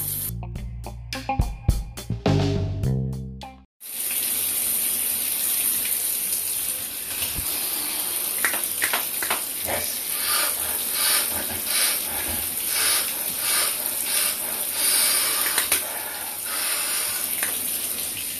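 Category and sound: household object, shower water running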